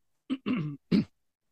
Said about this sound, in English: oh, I got to clear my throat. Let me clear my throat.